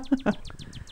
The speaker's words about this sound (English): There it is. That's it? What is it? Northern cardinal. All right. Great. I never knew that. That's the state bird of Ohio.